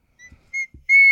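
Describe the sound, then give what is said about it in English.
A person whistles three short, clear, tonal notes close to the microphone, the last one louder and held longer, with faint low rustling between them. “I'm sorry, I'm whistling in your face.”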